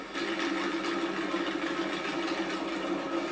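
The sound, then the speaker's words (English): Motorcycle engines of bikers gathered for the Tomahawk Fall Ride in the Northwoods run steadily, a continuous droning rumble with a constant buzzy hum that holds at an even loudness throughout, with no one speaking. “bikers from all across the Battery State and beyond are now amassing in the Northwoods”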